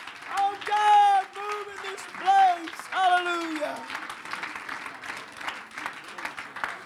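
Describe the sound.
An audience claps steadily to the Lord at a church service, a dense wash of applause, while voices shout and cheer over it before the clapping carries on alone.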